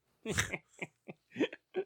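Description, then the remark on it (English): A rough burp, followed by four short, evenly spaced bursts that sound like chuckles or hiccups. “God, that fucking burp.”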